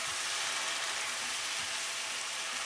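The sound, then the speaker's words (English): Tomato passata and a little water sizzle steadily in a hot pan with onions and spices, a dense, even crackle and hiss that holds at a moderate level throughout, with no voices. “Okay, the tomatoes going in. We've got in. Tomato passata in this one, yeah, and a little bit of water so that your onions don't burn and your spices don't burn.”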